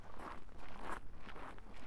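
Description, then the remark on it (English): Footsteps walking outdoors through fields in tremendous heat at an unhurried, steady pace, each step a soft, gritty crunch over a low constant rumble, with no voices. “As I keep walking, I keep those thoughts in mind.”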